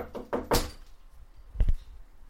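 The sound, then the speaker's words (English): Knocking on a door: three quick, fairly loud raps, a short pause, then two more close together, with no voices. “I'm just going to knock on the door.”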